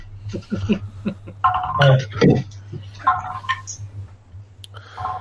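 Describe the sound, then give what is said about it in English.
Dice clatter and tumble repeatedly in quick bursts of sharp clicks over a steady low electrical hum, with faint voices in the background. “are you just rolling your dice over and over?”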